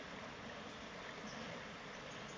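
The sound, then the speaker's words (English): A steady, unbroken rush of stream water flowing through a forest, even in volume throughout, with a dense hissing texture and no voices. “In the distance, listening to the birds chirping, the water flowing its way.”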